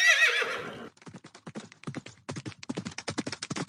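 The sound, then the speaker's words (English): A horse gives a loud, shrill whinny, then its hooves beat out a quick, steady clip-clop rhythm that picks up into a gallop. “Stop! Horse! Drive to the desert.”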